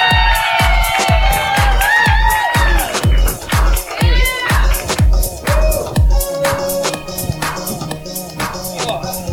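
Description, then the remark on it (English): A live audience at the Dry Heat Comedy Club claps in a steady, loud rhythm as the 10 Drink Minimum crew comes out, while shrill whoops and cheers rise above it; the clapping thins out toward the end as scattered cheering carries on. “Clap. Keep clapping. Keep clapping.”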